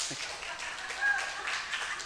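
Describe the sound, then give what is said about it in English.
A short burst of audience applause, a steady wash of many hands clapping at once, fairly soft, swelling slightly midway through. “Come on, give me a hand.”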